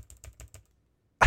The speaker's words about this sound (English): Yeah, I pressed the R button. I did this. Keep pushing it. Push like 1,000 times.